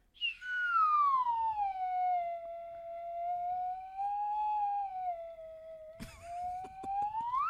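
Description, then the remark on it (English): A slide whistle sweeps down from a high note, wavers along at a lower pitch for several seconds, then slides back up at the end. It plays loud, with a brief clatter near the finish. “I'm, like, low-key geeking out about this slide whistle, but this one's really good.”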